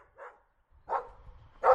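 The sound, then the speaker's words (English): Three dogs bark aggressively in three short, separate bursts, each louder than the last, with a faint low rumble underneath and no voices. “There's three dogs here. All right, guys. They're nice looking, though. They're angry, but then...”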